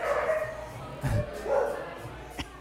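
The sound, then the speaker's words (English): A dog barks a few times in short, separate bursts, moderately loud, over a low background hum, ending with a sharp brief yip. “This break brought to you by dogs.”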